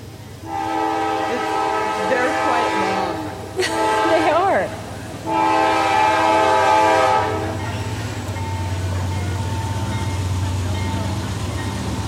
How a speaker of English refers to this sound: Trains don't make for good radio moments, so we're going to wait until it passes.